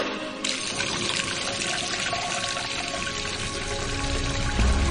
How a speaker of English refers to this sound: a crowd starts to gather, bringing with them containers of all shapes and sizes, some by hand, some in wheelbarrows. They form a queue and wait. Wait for the truck that will fill those containers with their week's ration of life-sustaining water.